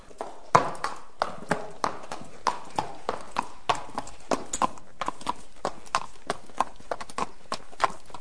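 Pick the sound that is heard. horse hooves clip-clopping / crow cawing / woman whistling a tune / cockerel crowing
horse hooves clip-clopping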